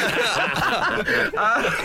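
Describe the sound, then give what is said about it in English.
A person voices a rough, hacking cough like that of a 20-a-day smoker, a loud, continuous run of raspy, chuckle-like bursts lasting about two seconds, with no words spoken. “It's a 20 a day hacking cough.”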